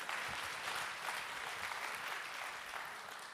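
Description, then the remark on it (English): An audience breaks into steady applause for a preacher who has just summarized the Book of Revelation in less than a minute, a dense, even wash of many hands clapping at a constant loudness for a few seconds, with no voices rising above it. “Don't I deserve applause for that?”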